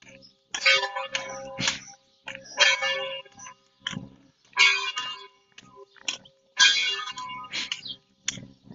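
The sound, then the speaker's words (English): A church bell strikes the hour in slow, evenly spaced heavy clangs about two seconds apart, each ringing out with a bright metallic tone and a lingering hum between blows. “Is it 8 or is it 9? It's got to be 9 o'clock, right?”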